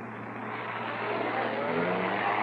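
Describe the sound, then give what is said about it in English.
A car engine runs with a steady, rumbling drone and a low hum underneath, swelling slightly louder over a few seconds. No one speaks. “He's getting into a car, thank goodness. He'll be easy to follow.”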